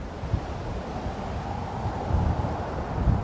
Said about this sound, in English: Let's deconstruct the soundtrack and explain these audio layers. First up, the ambience, which are sometimes called the backgrounds.